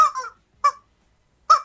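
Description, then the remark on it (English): Three loud, honking squawks from a squeezed large rubber chicken toy, each short and nasal, spaced unevenly with brief silences between, with no talking. “No, that's a rubber chicken you're squeezing.”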